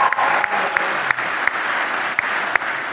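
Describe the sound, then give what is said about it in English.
A church audience applauds steadily as a member of the pastoral staff is introduced, a dense, even wash of many hands clapping at a constant loudness for several seconds, with a few sharper claps popping out of the texture. “And then, yes, you can go and clap again if you want to.”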